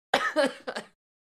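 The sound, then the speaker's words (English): A quick cluster of three or four harsh coughs, running together in under a second before silence falls. “Oh, man, I was coughing there.”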